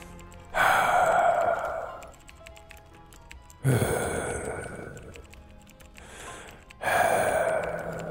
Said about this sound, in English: Didn't notice your heavy breathing until just a second ago. Why are you so sweaty and got a hospital gown?